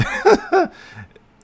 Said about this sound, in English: Cough, cough.